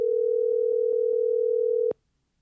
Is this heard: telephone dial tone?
yes